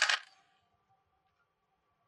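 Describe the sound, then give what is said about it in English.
Dice are rolled for a Constitution saving throw, coming up a natural 18, giving a brief bright clatter that quickly fades into a faint, sustained metallic ring. No one speaks. “Roll a Constitution saving throw, please.”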